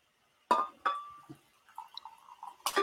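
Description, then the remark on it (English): Hot tea being poured from a thermos into a mug, some of it splashing: a couple of sharp clinks, then a soft, uneven trickle and gurgle, ending with another clink. No one speaks. “I just splashed my tea that I'm trying to pour out of a thermos into my mug all over my leg.”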